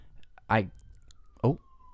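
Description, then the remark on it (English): A faint police siren drifts past, its steady tone sliding gradually lower in pitch, while two short breathy bursts sound in the foreground. “We had to take a siren break.”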